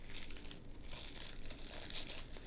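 Tissue paper gift wrapping on a birthday present being crinkled open, a continuous papery rustle with bright crackles and a few sharper tearing bursts, steady and fairly loud, with no voices.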